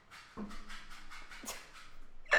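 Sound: dog scratching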